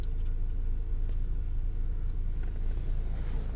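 A steady, low engine rumble fills the whole stretch, like a car idling at a Taco Bell drive-thru while food is ordered, with no speech and only faint, scattered higher noises above the constant hum.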